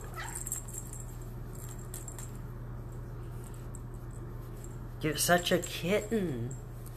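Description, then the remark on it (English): A kitten gives two or three short, high-pitched meows in quick succession near the end, fairly clear, after several seconds of quiet with a steady low hum. “You're such a kitten, baby.”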